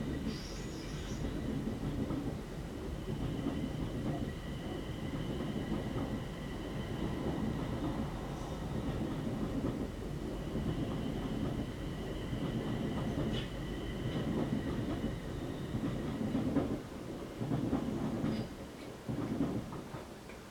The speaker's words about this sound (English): Completely empty. Did you see it? It's like a ghost train.